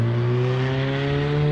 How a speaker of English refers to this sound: Lordy. All these cars.